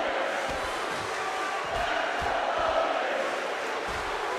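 A packed wrestling arena crowd roars continuously during a match between Hollywood Hulk Hogan and Roddy Piper, a dense wall of cheering and shouting with scattered thumps and claps, loud and sustained throughout without any clear single voice.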